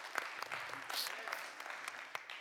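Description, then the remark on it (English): An audience applauds team members who have served for the last two years, with dense, steady clapping, many hands at once forming a continuous crackle with a few sharper individual claps standing out, holding at an even loudness throughout. “And we are now, yes, please clap for them.”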